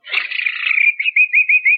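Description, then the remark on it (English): A person whistles a bird call: a fluttering warble that settles into a steady high note, then four or five quick chirping pulses, loud and close with no talking. “I did bird imitations.”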